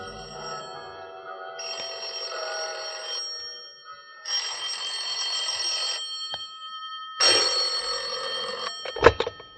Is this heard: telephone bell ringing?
yes